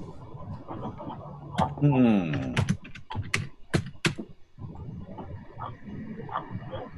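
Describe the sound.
Scattered, crisp keystrokes on a computer keyboard, a handful of sharp taps spaced irregularly, heard over low background voices and a brief rising vocal sound.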